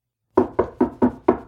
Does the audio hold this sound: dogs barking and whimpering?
no